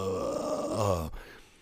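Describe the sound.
A person deliberately imitates a zombie with a low, guttural groan, a strained voiced growl lasting about a second that cuts off abruptly, followed by a quieter, breathy tail.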